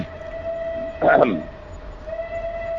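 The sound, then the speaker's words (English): A hollow, breathy owl hoot blown gently through both cupped hands swells briefly and loudly in the middle over a steady, faint humming tone, sounding more like a train whistle than an owl. “You need both hands, cup them, and blow in it gently.”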